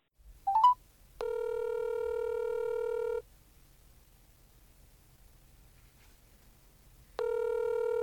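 A quick burst of touch-tone dialing beeps as a telephone call is placed to a book editor, then a steady electronic ringback tone sounds for about two seconds, pauses in near silence, and starts ringing again, clear.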